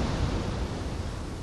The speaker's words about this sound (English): Is that what the sea sounds like? Yeah. It's beautiful.